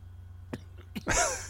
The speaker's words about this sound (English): Oh, smoking that shit. Let it out. Let it out. I see you trying to hold that shit in. Just fucking cough it out.